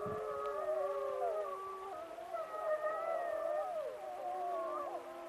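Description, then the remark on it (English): Several Yellowstone wolves howl together a long way away, long overlapping wavering tones rising and falling in a continuous chorus, faint, with no voices nearby. “the Yellowstone wolves began to howl. And the wolves are howling right now.”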